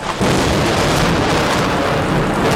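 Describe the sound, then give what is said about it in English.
Thunder rumbles loudly and continuously after a sudden onset as a storm approaches, a broad, roaring storm sound with a rain-like hiss, dominant with no voices. “Bit of a storm brewing.”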